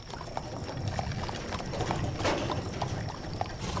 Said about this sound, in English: You hear a door slam shut and a pair of horses begin to pull away.